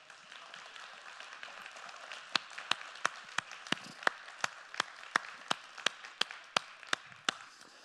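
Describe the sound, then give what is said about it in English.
A crowd claps in a steady, rhythmic beat, sharp hand claps ringing out evenly over a softer wash of scattered applause from many people in a room, clapping their hands as an applause to the Lord. “When I hear somebody in this room start to clap their hands, it's not just an applaud to the Lord, it's a declaration to the enemy.”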